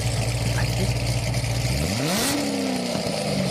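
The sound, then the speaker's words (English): A Ford Mustang Coyote 5.0 engine rumbles at a steady low idle, then revs once, its pitch climbing quickly and holding at a higher, loud drone until the end. “That's Coyote 5.0. I'm going to guess Mustang.”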